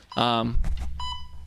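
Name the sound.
electronic beeping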